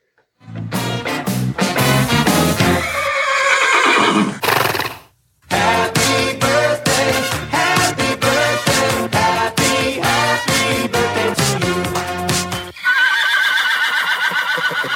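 A horse whinnies loudly over a steady, rapid clip-clop of hooves, with a brief pause near the middle before the galloping rhythm resumes and a final drawn-out neigh closes it.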